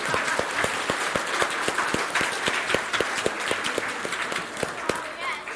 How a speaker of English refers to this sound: Okay, so let's give our scientists a round of applause.